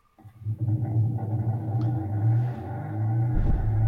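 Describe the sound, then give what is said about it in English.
A barcode scanner reads barcodes attached to the blades of a spinning fan, its rapid beeps blurring into a loud, sustained droning tone with low rumble that shifts in pitch like an engine revving. No one talks. “he's got it hooked up to a fan, he's got barcodes on the fan blades.”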